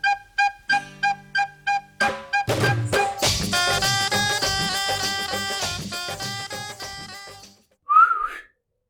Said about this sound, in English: Trying to hail a taxi. Oh. I got the whistle, yeah.